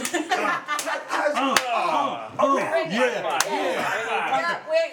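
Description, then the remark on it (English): Two sharp, loud hand slaps like high fives crack through ongoing excited talking, spaced a couple of seconds apart. “Every high five is a clip.”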